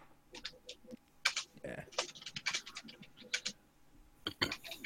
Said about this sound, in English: I guess birds and stuff, and someone's typing really loudly. He started to type really loudly as soon as we started recording. Man, I'm sorry, my fat fingers are hitting the keyboard too hard.